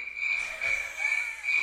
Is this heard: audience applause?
no